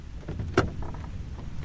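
A single sharp mechanical clunk, like a car door latch releasing as a man opens the door and gets out of a car stuck in a downpour, stands out over a steady low rumble of idling engine or ambient noise.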